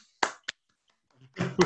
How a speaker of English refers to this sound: You'll have to unmute yourselves. I'm sorry, I can't mute you. Anyway, that was not a very well organized round of applause